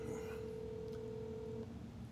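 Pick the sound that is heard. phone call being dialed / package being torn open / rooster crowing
phone call being dialed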